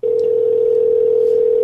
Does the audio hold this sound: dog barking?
no